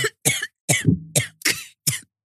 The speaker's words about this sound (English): Yeah. I can't believe he's making you cough like that.